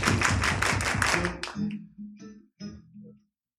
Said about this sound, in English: I feel like clapping my hands like this. Come on, it feels good. I feel like clapping my hands like this.